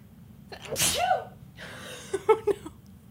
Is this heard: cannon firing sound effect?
no